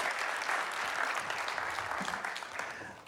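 An audience breaks into sustained applause, a dense, steady wash of clapping that holds strong for about three seconds before easing slightly at the end.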